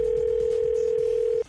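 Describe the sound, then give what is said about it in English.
A steady, loud telephone dial tone as a call is placed, holding one constant pitch for about a second and a half, then cutting off abruptly, with faint background rumble beneath it. “So I'm going to start the call from the dentist's office to let her know why she's having that problem.”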